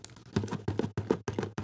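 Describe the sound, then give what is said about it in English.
A loose object knocks and rattles inside a shaken gift box, a Christmas present for a dad from his kids, a quick series of about five hollow thuds in a steady back-and-forth rhythm, fairly loud with no talking. “This week, I'm going to listen to it. It's really knocking around in there.”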